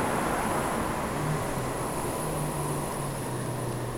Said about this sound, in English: Ooh, we actually have a car driving past on this six-lane road. Who would have thought?